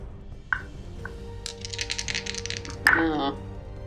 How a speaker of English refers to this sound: Sounds like a lot of dice. This does.